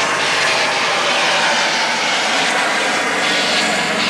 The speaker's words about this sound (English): I have to pause for a moment as a helicopter goes overhead.